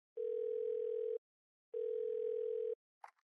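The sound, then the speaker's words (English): Two long, steady telephone ringing tones with a short pause between them, clear, followed by a brief click as the line is picked up, on a call to an English teacher. “So, now we got to answer the phone and talk to our English teacher”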